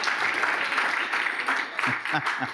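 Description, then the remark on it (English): A church audience claps steadily for Pastor Joe in a dense, continuous patter of applause, with a few voices cheering and calling out over it toward the end. “So clap like he's in the room.”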